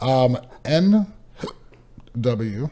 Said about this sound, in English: I threw the second hiccup in there.